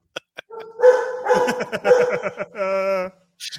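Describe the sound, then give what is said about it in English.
A female dog in a garage barks loudly, a quick run of excited barks that ends in a drawn-out, high whining yowl, with no one talking. “How loud is the dog?”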